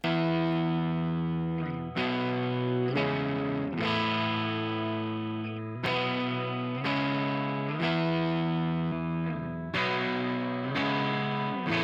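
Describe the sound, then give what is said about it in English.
Thick, distorted electric guitars play sustained power chords together, changing roughly every two seconds in a steady rhythm, loud with a dense, buzzing tone and no voices. “I'm going to work on these guitars a little bit.”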